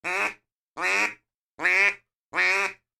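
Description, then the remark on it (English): Four evenly spaced flat quacks blown on a duck call with a steady stream of soft, pressurized air, each short and steady with a buzzy, reedy tone, loud with brief silences between, no talking. “Because if you learn that flat quack, and it's just a steady stream of soft air, pressurized air.”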